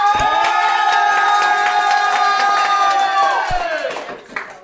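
An audience cheers and claps to vote for one of two producers in a contest, with a loud, sustained high shout held over scattered hand claps for several seconds before it tapers off and the noise thins out.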